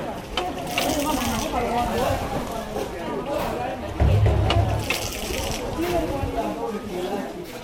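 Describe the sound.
Refugees fill old petrol cans with water from a well in a large refugee camp on the Thai-Burma border: water splashes and gurgles steadily into the metal cans, a continuous busy pouring sound with a thud partway through, while a crowd of voices chatters in the background.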